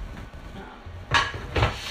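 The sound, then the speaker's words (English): Two sharp clinks of the last dishes from the dishwasher being set down and put away in a cupboard, with a bright ceramic clatter over a low, steady background hum. “Anyway, that's the last dish that I have to put up.”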